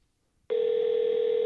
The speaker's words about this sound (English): What type of phone is that? They don't answer, we got another location. Sounds like a rotary phone.